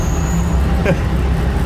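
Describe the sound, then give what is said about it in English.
A car engine drones steadily at low speed in second gear, at about 20 to 30 kilometers per hour, a continuous rumble from inside the vehicle as it is driven, with a brief faint tick partway through and no talking. “Okay, second gear. So that's 20? 20 kilometers per hour? 30 almost.”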